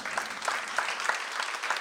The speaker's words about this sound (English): Can we just clap at her for a second?